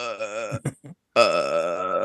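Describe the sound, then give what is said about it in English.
A person makes a croaking, rattling throat noise while trying to burp: a warbling guttural stretch, a few choppy catches, a brief pause, then a longer sustained croak, fairly loud. “all I ever like, did when I was younger when I would try to burp as a little kid was make the Grudge noise”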